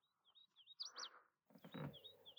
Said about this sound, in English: So here's a hooded warbler. Let's see if this works.